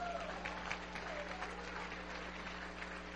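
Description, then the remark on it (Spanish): Steady applause from a church audience, given as praise to the Lord, a dense wash of many hands clapping at an even level for the whole stretch, with a low hum underneath and no voices standing out. “Y luego regálale un aplauso al Señor.”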